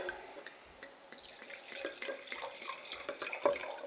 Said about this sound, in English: We've got looks like a Pinot. Yes. Let me go ahead and pour it.